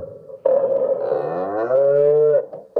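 A cow lets out one long, loud moo, a drawn-out lowing call of about two seconds that bends in pitch before cutting off, with no voices around it.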